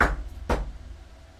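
Two slow, deliberate knocks on a headmaster's closed office door, about half a second apart, each a solid thud with a short ringing decay, with no voices.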